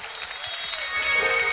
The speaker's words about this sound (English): Be seated in the house of the Lord, everybody. God bless you. God bless you. Clap your hands and praise God.